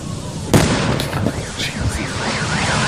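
A sudden, loud truck explosion blasts out, followed by a rumbling, crackling aftermath as a car alarm starts wailing, its pitch sweeping steadily up and down.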